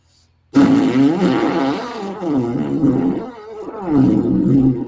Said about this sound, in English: I got the first sign of circular breathing, because that's what you're trying to get, so that you can basically cycle air through.